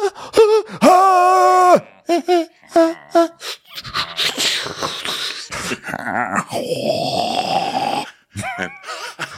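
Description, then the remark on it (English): A single voice mimics a group breathing heavily together: strained, tonal groans and short gasps at first, then a stretch of ragged, noisy panting and wheezing, fairly loud, with no words. “And then we hear them all breathing, and this group makes for an interesting chorus of breathing.”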